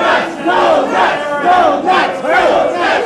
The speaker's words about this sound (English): So General Beers comes out, and the crowd's like, I didn't pick up what they were chanting. It was very vague. It was either no rice or termites are so nice. I don't know.